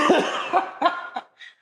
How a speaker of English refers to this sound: I'm like struggling and trying not to choke to death on my cough drop.